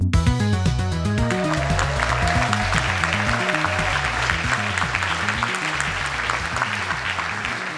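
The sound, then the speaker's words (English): An audience at The Verge's 10-year anniversary party, after the world premiere of the Springboard documentary, claps steadily and loudly for several seconds, a dense crackle of many hands, with low tones humming beneath the clapping throughout. “But actually, I don't want you to applaud for me.”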